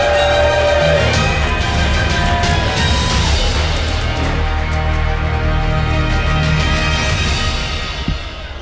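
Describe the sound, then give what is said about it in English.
A crowd at an awards event applauding a band loudly and steadily for about eight seconds, a dense wash of clapping with some tonal sound mixed in, tapering off at the very end. “Another round of applause for …!”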